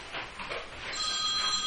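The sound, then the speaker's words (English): A telephone bell rings, a bright metallic trill that starts softly and swells into a steady, sustained ring, with no one speaking. “A few weeks later, he calls her.”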